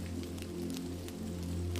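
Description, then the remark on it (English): Soft rain patters on a thatched roof in quiet, scattered taps and light bursts of drops, over a steady low hum throughout; no voices. “The patter of raindrops on the thatched roof is like a gentle, comforting melody that matches the cadence of the words that you read quietly.”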